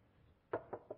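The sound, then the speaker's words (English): Three sharp knocks on a room door in quick succession, moderately loud, each one a short hollow thud that fades fast. No voices are heard. “Knock on the door.”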